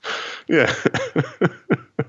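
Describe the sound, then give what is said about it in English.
A raspy intake of breath followed by a quick series of six or seven short, harsh coughs, fairly loud, coming in an uneven rhythm with no talking. “A dinosaur with a bad back and a cough.”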